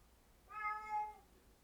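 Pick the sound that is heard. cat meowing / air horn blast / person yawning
cat meowing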